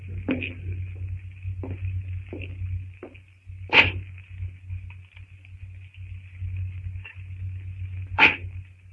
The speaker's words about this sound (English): The sound of Greystoke's axe echoes through the strangely silent jungle.